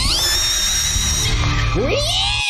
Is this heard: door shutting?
no